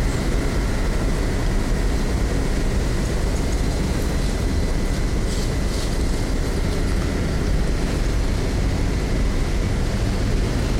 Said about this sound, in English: There's a constant low-level hum from these wires or from the plant. I can't tell from where